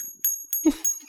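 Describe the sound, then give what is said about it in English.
A short, honking air horn blast with a buzzy, mid-low tone, lasting only a fraction of a second among a few brief clicks and bursts of noise. “I told you, this is the new air horn.”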